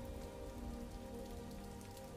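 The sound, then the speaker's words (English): Heavy rain from a continuing storm pours steadily in a dense, unbroken hiss with a low rumbling undertone, holding a constant loud level throughout with no voices. “Growing stronger, it would seem, as the storm continues.”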